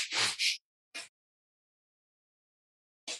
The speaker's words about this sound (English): Now, if you just breathe by rote and just, you know, let's say do a breath of fire